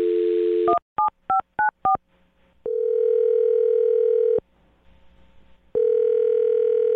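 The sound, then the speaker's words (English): A phone number is dialed: a brief dial tone, five quick touch-tone beeps, then two long, loud ringing tones separated by a short pause. No one speaks. “I'm going to dial his phone number and get him on the phone and see if we can get you an answer, okay?”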